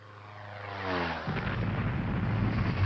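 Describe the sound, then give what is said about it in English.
A plane crash sound effect: a descending laser-like zap sweeps downward for about a second, then breaks into a loud, sustained rumbling explosion that keeps roaring to the end, with no talking. “Plane crashes. Well, they're laser plus explosion. That's what that one was.”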